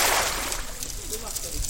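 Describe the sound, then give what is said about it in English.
A metal fishing net tossed onto a river by a Malay fisherman hits the water with a brief, hissing splash that quickly fades into a steady wash of water, while faint voices murmur underneath. “a Malay fisherman from a nearby village, tosses a metal net onto the river and watches it fade beneath the water's surface.”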